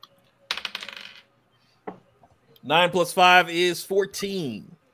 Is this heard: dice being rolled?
yes